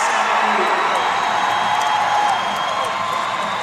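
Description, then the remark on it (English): A steady roar of a basketball arena crowd, not a very big one, cheering and whooping for Wichita State against SMU, with Wichita State leading by four points with 7.5 seconds left; loud and sustained without pause, a dense wash of many voices throughout. “It's been loud and supportive, and it has certainly felt like a home game for Wichita State.”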